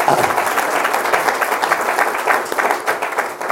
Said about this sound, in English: And I just want to recognize her. So we should give a round of applause because I enjoyed it.